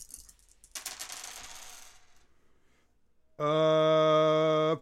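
dice being rolled

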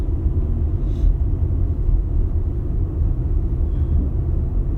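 car interior rumble

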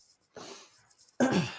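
throat clearing

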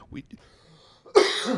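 cough

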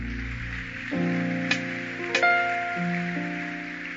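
audience clapping

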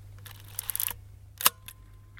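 camera shutter release click

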